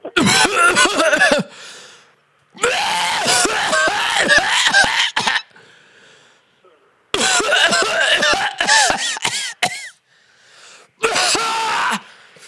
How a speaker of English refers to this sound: I just wondering, you got any remedies for coughing or anything like that? You what now, sir? You got any remedies for sale that can aid with coughing fits? How bad of a cough? That bad of a cough.